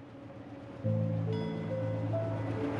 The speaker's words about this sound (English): The final train rolls away from a dim, torchlit station.